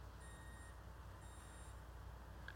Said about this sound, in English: If something's about to blow up, someone will tell me, right? I hear beeping. If there's like a bomb going off, someone will tell me, I hope.